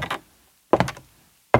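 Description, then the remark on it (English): Three heavy, hollow thuds land at a slow, even pace, the footsteps of a man walking in at the back of a garage used as a recording studio, on a wooden floor, each one resonant, with quiet gaps between them and no voices. “It sounds like he has two peg legs.”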